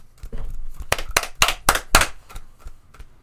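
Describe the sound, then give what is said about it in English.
Brief applause: a handful of sharp, loud handclaps in a quick, slightly uneven burst, trailing off into a few faint claps over a low background rumble. “That's all the applause.”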